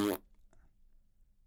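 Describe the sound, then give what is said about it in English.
A single short, loud fart noise blurts out at the very start, a brief buzzy raspberry that cuts off quickly and leaves only faint low background rumble. “Yeah, it always ends with a fart noise.”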